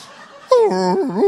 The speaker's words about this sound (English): Turns out it's Sonny the dog at the back at the back door whinging to come in.